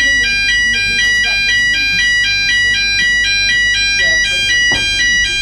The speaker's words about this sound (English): There we go. Fire alarm's working.